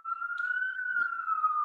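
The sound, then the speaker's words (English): A police car siren holds a steady, slowly gliding wail near one pitch for the whole stretch, fairly loud and sustained, with faint street noise beneath and no talking. “I hear that siren.”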